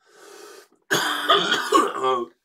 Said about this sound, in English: Nigga, you cough, so.